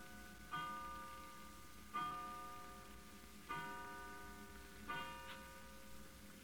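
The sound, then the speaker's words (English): A clock chimes twelve o'clock with four evenly spaced, ringing bell strikes about a second and a half apart, each tone lingering and fading before the next, with no voices. “12 o'clock.”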